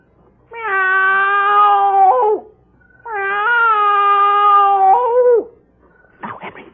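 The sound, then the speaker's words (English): A man's voice imitates a cat on a house's front porch, giving two long, drawn-out meows with a falling wail at the end of each, fairly loud, followed by a brief rustle. “Now, I meow twice.”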